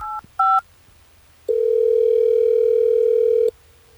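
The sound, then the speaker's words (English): Two quick touch-tone dialing beeps, then a single steady telephone ringing tone that holds for about two seconds before cutting off, clear with no voices. A phone call is being placed live on air by the radio station Hot 101.5 in Tampa Bay. “Well, let's try to get her on the phone.”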